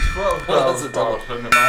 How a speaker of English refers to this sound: It's all a gong. It's all a gong. It's one big gong.